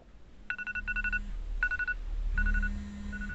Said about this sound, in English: My iPhone alarm shocks me awake. Really need to remember to switch it to something less jolting.